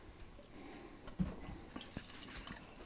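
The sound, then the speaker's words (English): Beer pours into a glass with a soft, steady trickle, broken by a few splashy drips and gurgles. The sound is quiet, with no one talking over it. “You get the first pour, buddy.”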